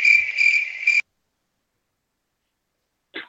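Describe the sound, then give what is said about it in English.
A loud cricket trill chirps steadily for about a second, cuts off into silence, then starts up again briefly at the very end. “Oh, man, you hit me with the crickets and y'all had me muted.”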